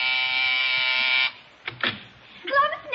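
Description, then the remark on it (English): A harsh, steady electric doorbell buzzer drones loudly for just over a second, then cuts off, followed by a few soft knocks or clunks and the start of a voice speaking. “Oh, see who's at the door, will you, dear?”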